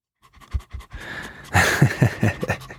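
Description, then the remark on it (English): A large female dog pants rapidly in a recording studio, quick rhythmic breathy huffs that grow louder and more insistent partway through, with no talking over it. “This is my dog, Thelma Lou, who is always very curious when I go into the studio”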